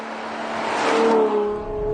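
A Ferrari 812 GTS V12 engine revs and swells in a sustained, high-pitched roar, rising to a peak midway before easing slightly, loud with no talking.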